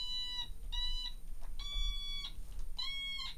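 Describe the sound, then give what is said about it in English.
Four short, buzzy electronic tones from Japan's favorite musical toy, made by opening and closing the mouth while pushing its stem switch, each bending in pitch with a voice-like wah-wah sweep at its end, played in a steady rhythm with brief gaps between. “And then wah-wah, a musical special effect to produce voice-like tones.”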